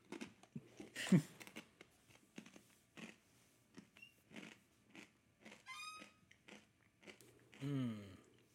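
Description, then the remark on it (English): Someone crunches on a snack, with a sharp bite followed by irregular bursts of crisp chewing over several seconds. “Josh, edit out my crunching.”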